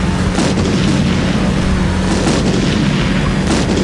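A dense, continuous rumble of loud booms and blasts as a series of large colorful balls released by the Joker explode one by one, one explosion rolling into the next with heavy low-end thunder and crackling debris, no voices present.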